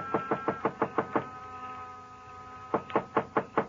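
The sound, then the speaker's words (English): Knocking on the wooden door of a small, dark frame building on a side street near a park, in two quick bursts of about six or seven raps each, separated by a short pause. The knocks are fairly loud, with no voices. “But in the hope he might be asleep in his little apartment up above, I knocked.”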